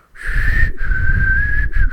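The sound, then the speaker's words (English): A person whistles with their mouth, holding one steady, fairly high note, with a couple of brief breaks and audible breathy airflow underneath. “You know, I can get like a little bit of a whistle, but not as like, you know, not as audible.”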